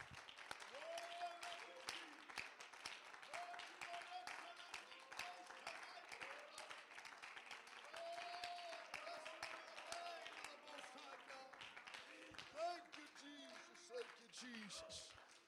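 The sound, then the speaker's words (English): A church audience claps hands in praise to God in sustained, dense applause for about fifteen seconds, with voices calling out and cheering underneath the steady clatter of clapping. “Let's give him a hand clap of praise one more time.”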